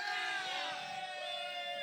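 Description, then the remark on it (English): A crowd cheers and whoops loudly and steadily, many voices blending into a dense, high-pitched roar that holds for about two seconds without a break, cheering the news that Suicide Squad won an Oscar. “Did you not just cheer the fact that Suicide Squad won an Oscar?”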